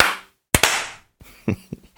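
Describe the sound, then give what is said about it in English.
Hand claps made to clap in, on a count of 1, 2, 3: a pair of sharp, loud hand claps lands almost together, followed by a few softer, scattered claps and a brief hiss of noise at the start. “We're supposed to clap it in.”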